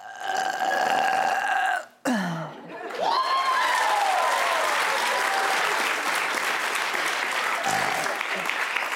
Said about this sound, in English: Round two is all about timing, okay? The challenge is, give us your longest belch.